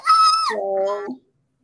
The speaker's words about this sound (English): And I'm so excited for you. That's where the scream came from.